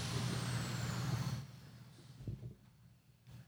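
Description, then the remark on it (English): Someone runs a power grinder at the Chophead Custom Cycles shop during the work day; it roars with a harsh, gritty whir and a high whine that slowly drops in pitch, then cuts off abruptly partway through, leaving a quieter low rumble and faint clatter. “No, it's someone on the fucking grinder or something.”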